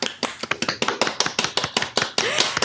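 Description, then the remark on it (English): A small audience claps for a few seconds, a quick, steady run of sharp, crisp hand claps at fairly even loudness, with no voices over them. “Oh, did I hear clapping? Yes, please, let's clap.”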